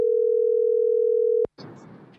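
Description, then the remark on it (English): A steady, unbroken telephone dial tone hums at one low-mid pitch for about a second and a half as a call is placed, ends in a sharp click, then gives way to muffled, crackly line noise. “I don't know if they're going to answer or not.”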